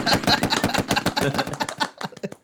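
A rapid, loud flurry of hand claps fires off in a fast, machine-gun-like rhythm for about two seconds, then trails into a few sparser, slightly quieter claps.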